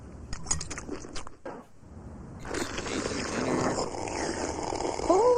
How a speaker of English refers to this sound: All of you. There's no need to slurp your soup so loudly.